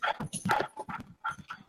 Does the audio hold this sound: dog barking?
yes